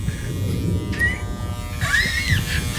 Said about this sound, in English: That's just my electric toothbrush.